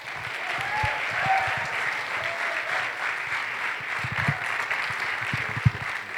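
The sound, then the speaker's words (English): Sustained applause from an audience at LifePoint welcoming a guest speaker from Florida, a dense, steady wash of clapping with scattered louder claps and faint whoops or cheers rising above it, continuing evenly for several seconds. “So will you guys give Dylan McNeely a warm LifePoint welcome?”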